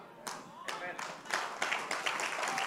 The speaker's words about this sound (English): I'm so glad you're clapping for yourself.